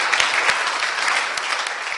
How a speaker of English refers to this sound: the Lord a hand clap of praise. Amen.